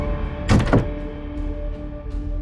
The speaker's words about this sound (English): Later that evening, Alyssa strode into her room and shut the door quickly.